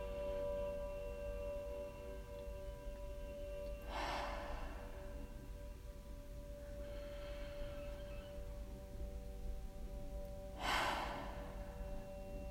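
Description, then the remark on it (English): Three deep, airy breaths in a guided breathing exercise, deep belly inhales with big audible exhales: a strong one, then a softer one, then another strong rushing exhale, spaced a few seconds apart over a steady low background hum, with no talking. “Please take a deep inhale, fill your belly, let your chest rise. Big audible exhale. Twice more.”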